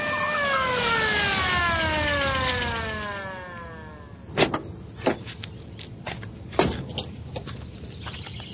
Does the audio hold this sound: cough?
no